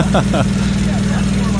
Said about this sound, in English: Sounds like the engine's knocking like a motherfucker too, doesn't it? Look, it's just firing out Cheetos.